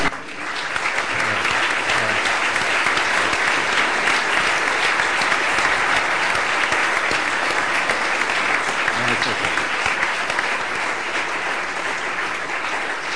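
An audience applauds steadily for about thirteen seconds, a dense, even patter of many hands clapping at a constant, fairly loud level without a break.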